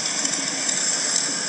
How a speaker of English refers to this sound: God, it's the most annoying noise ever. It's a motorcycle.